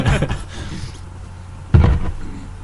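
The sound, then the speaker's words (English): A door shuts with a single solid thud partway through, fairly loud, after a stretch of low background rumble and faint shuffling. “Yep, and I shut the door for Robo.”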